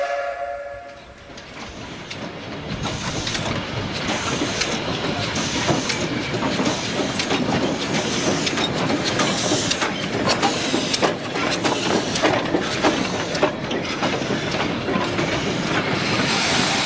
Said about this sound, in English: Train ride was a long and thoughtful affair for me.